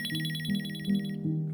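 A mobile phone ringtone plays a bright, warbling electronic trill in steady rapid pulses, with a lower tone swelling in repeated rising notes underneath; no one speaks.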